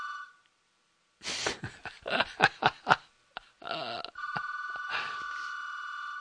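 An electronic telephone ring, a steady buzzy tone heard briefly at the start and again at length near the end, with a burst of loud, choppy noises in between.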